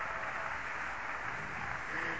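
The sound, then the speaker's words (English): An audience claps their hands to the Holy Ghost, a dense, steady wash of many overlapping claps with no pause and no voices, holding an even loudness throughout. “Somebody clap their hands right now.”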